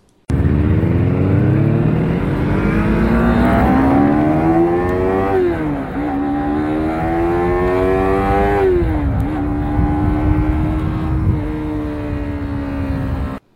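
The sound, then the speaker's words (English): A motorcycle engine roars loudly, its exhaust note climbing through rising revs, dropping briefly between gear-like pitch shifts, then holding a strong steady drone until it cuts off. “And here we go with bike number two.”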